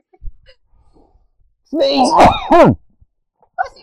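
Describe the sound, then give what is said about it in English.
A single loud sneeze: a voiced, rising intake breaks into a sharp, noisy burst, then trails off, with near silence before and after. “Sneeze. Oh, bless me.”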